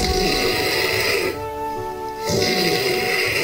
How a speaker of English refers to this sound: that's not a chainsaw. That's … snoring.